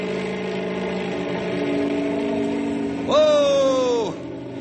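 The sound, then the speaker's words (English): A helicopter engine drones steadily, then revs up into a loud, rising whine for about a second before dropping back, like a craft straining to lift off. “I'm going to have to rev it up for better stability. Here we go.”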